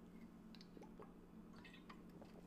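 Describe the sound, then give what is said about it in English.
Quiet wet gulping and squishy mouth sounds as someone drinks a swig of water, a few soft liquid clicks spread over a couple of seconds with no talking. “So the other strategy to consider, I'm going to take a swig of water.”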